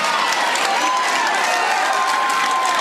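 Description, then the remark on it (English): A loud, sustained roar of a baseball crowd cheering and clapping during a two-ball, two-strike count, dense and steady throughout with no gaps, a few whistles riding over the noise. “Loudest the crowd's been today.”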